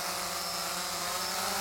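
The propellers of a drone named Vanguard buzz steadily as it flies away carrying an Inner Circle t-shirt, a dense whirring hum with a high whine that holds at an even loudness throughout, with no voices.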